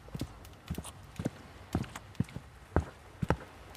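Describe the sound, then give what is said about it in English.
Footsteps approach with a steady walking rhythm, about eight hard, distinct steps striking a firm surface, growing slightly louder toward the end, with no talking. “Footsteps.”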